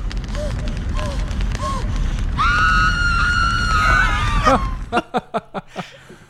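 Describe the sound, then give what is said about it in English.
Chris Tucker lets out a loud, sustained, high-pitched scream for about two seconds over a busy film-scene background, followed by a quick series of short, sharp bursts. “And this was the most famous Chris Tucker scream.”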